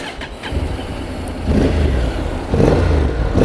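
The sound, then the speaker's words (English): A 750 motorcycle engine idles with a deep rumble, then revs up twice in quick succession, loud, with no talking. “You can feel it's, you know, it's a 750, it's got a nice engine lump on it, but it feels good.”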